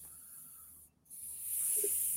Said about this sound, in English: And you want to do that until there's no more hissing, and that will let you know that the tank is totally empty. There's no more pressure in there.